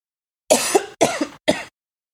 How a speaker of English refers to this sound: Excuse me, I'm about to cough.